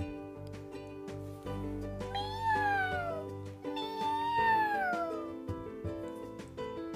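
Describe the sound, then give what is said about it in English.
A kitten clinging to a toy boat out in the water gives two long, plaintive, far-off meows a couple of seconds apart, each sliding downward in pitch, sounding distressed over a steady musical background. “Then they heard a far-off cry.”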